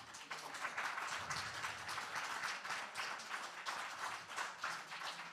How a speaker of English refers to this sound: Did y'all hear the power in that hand clap? That sounded like absolute authority.